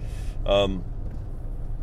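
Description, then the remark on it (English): A steady, low rumble of a car cabin on the move fills the whole stretch, with a brief voiced sound from someone cutting in near the middle. “I probably already look weird because I'm always talking to myself in this car while I'm recording this podcast.”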